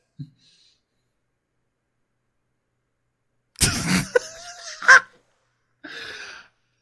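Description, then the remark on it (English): A sudden, loud sneeze from Jamie Marchi bursts out after a stretch of silence, followed by a sharp second burst and a short, breathy trailing sound. “God bless you, Jamie Marchi.”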